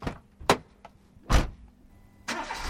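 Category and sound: vehicle, car engine running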